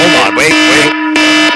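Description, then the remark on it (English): An alarm clock blares a loud, steady, buzzy electronic tone that pulses in repeated bursts, with a fainter wavering sound mixed in underneath during the first half. “Yeah, no, I got my alarm clock that I keep forgetting to shut off.”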